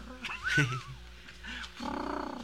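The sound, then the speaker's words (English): A person imitates a pigeon or dove with their voice, making a few low, throaty coos with gliding pitch, ending in a longer warbling, pulsing coo. “That sounds just like a dove, doesn't it? Like a pigeon.”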